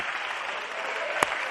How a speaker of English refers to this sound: You ought to clap your hands unto the Lord, all ye people, and you ought to thank God for his word today.